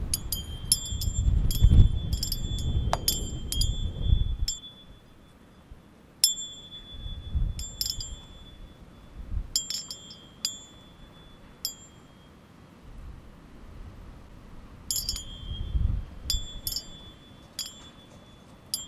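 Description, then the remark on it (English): A metallic wind chime on the porch of a blue house with white trim tinkles in irregular clusters of bright, ringing notes that linger and fade, with a soft low rumble of wind or background noise beneath and no voices. “And on the porch, there was a wind chime.”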